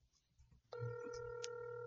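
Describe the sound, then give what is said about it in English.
A steady electronic ringback tone starts abruptly after a low murmur of background noise, holding several stacked pure pitches at a constant level: an outgoing phone call being placed during the show Licking Non-Vanilla. “There it is. That's the ring, Chris.”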